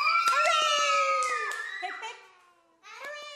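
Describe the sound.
A group of voices, many sounding like children, shouts a long drawn-out hip hip hooray, three cheers for children who are leaving, over scattered clapping, fades, then launches into another loud cheer.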